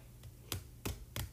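Slow typing on a computer keyboard: three distinct, evenly spaced key clicks, crisp, with a fainter tap before them, over a low background hum and no talking.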